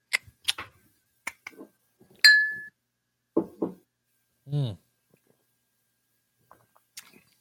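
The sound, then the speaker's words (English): Beer glasses clink together in a toast, with a bright ringing tap after a few lighter knocks, followed by a couple of brief voiced murmurs. “Well, cheers. Cheers.”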